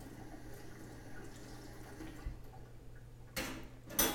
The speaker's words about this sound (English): He is washing the spoon.